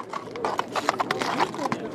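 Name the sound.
horse hooves clip-clopping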